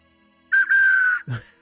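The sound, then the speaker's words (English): A shrill bird-call whistle, the Big Thunder Mountain bird whistle from Disney's attraction, sounds: a quick chirp, then a long steady piping note, ending in a brief lower, fading warble. No one speaks. “But you got your whistle.”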